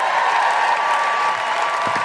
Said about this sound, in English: Rachel Paris, everybody! Keep that applause going for the one, the only, the incredible Kima Bob!